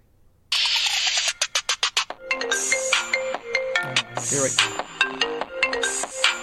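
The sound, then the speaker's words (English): A loud electronic ringtone-like jingle plays from a phone: a burst of hissy, rapid rhythmic pulses followed by a bright, choppy melody of synthetic tones, with no talking over it. “I will say one thing, the minute that I beat Bloodstarved Beast, and if it's on my first try, I am changing my ringtone to this.”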